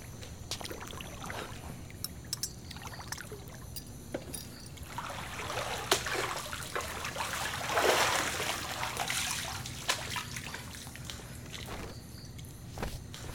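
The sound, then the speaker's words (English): A drink is poured into a glass with a rising, splashy gurgle that peaks midway. Soft footsteps and small clinks sound around it, with no one talking. “Mind if I pour myself a drink?”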